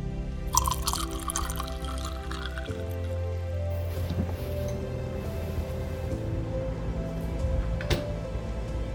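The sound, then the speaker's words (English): Lemonade pours steadily into a glass for several seconds, a continuous liquid gurgle with faint drips and a tonal ring that shifts partway through as the glass fills. No one speaks. “I promised you a glass of lemonade.”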